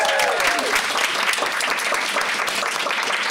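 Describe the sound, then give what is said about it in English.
A live audience applauds loudly at the end of a performance, a dense, steady wash of clapping hands that holds at full strength throughout, with a few faint whoops rising near the start. “Give a massive applause.”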